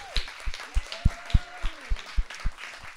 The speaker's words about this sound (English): let's wrap it up there, because what a beautiful sentiment to end today on. Can you please give one more round of applause to our speakers?